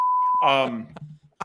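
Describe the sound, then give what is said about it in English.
A steady, high-pitched censor bleep tone holds for a moment, then cuts into a burst of voiced vocal sound followed by a few short clicks and taps. “That goes into the archives of video that will never be seen by the public. Just beep out.”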